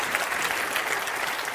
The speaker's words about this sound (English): Can you clap your hands if you know what I'm talking about? Isn't that true?